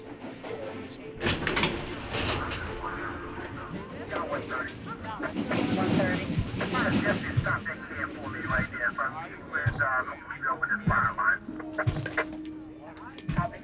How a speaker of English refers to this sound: After more than a year, Riding the subway for the first time was a nerve-wracking experience. It's hard to shake something like that.